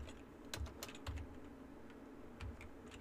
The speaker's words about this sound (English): Sorry, I didn't realize you guys could hear me typing. That's not good. I gotta fix that.